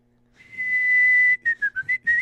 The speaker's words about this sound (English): Give our listeners a taste of your whistle.